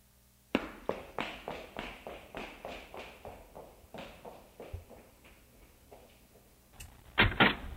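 A steady run of footsteps as someone goes to answer the door, quick even thuds that gradually soften, followed by a brief pause and then a sharp, louder clatter like a door being unlatched and opened.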